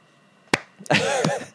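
A few sharp, isolated hand claps, irregularly spaced, applauding a speaker's good words, with a short pitched vocal sound rising and falling between the last two.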